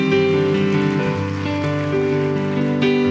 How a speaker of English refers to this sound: And everybody said, amen. Let's clap our hands in agreement on that, can we? Amen.